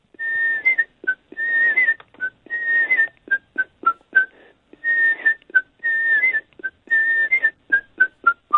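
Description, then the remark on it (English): A person whistles the theme tune of the television programme Life of Birds, a bright, tuneful melody with quick repeated phrases of sliding and chirping notes in a lively rhythm, with no talking. “All those years you watched Live of Birds on the telly, that was my whistle.”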